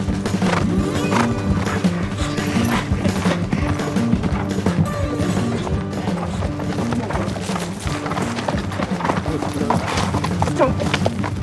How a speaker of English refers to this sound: So all the runners get down into this wash first, come up into this barren desert, and pretty quick, on your right, come the horses.